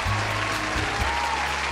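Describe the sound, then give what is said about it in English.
A crowd applauds, a dense, steady wash of many hands clapping at once, loud and continuous with no one speaking over it. “Everyone claps. Everyone applauds.”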